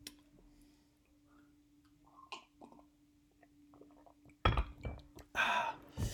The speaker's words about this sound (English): That was a sip of water from the Real Madrid emblazoned beer mug.